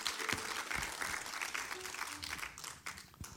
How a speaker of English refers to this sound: So, ladies, you can applaud these guys.